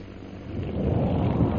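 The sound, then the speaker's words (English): The explosion of Lieutenant Holbrook's second bomb: a deep, rolling rumble that swells in loudness over a second or so and keeps booming steadily, heavy in the low end with no voices present. “That explosion we just heard was Holbrook's second bomb.”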